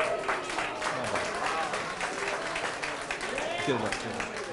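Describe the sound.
An audience breaks into warm, steady applause for several seconds as the winning 'worker bee' of a game is called up, dense clapping from many hands, with a few voices calling out over it.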